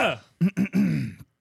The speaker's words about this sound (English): I'm clearing my throat. Clear your throat out just like that.